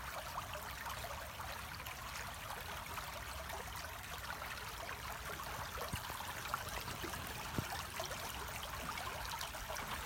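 Steady babbling stream water runs continuously throughout, a soft, even rushing and trickling with no pauses, moderately quiet, with no voices.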